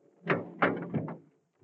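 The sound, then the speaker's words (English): The heavy door of a cold loading chamber is shut and secured to hold the temperature down, giving a quick run of three or four dull thuds and clunks over about a second before going quiet. “We'd better secure the door to hold the temperature down.”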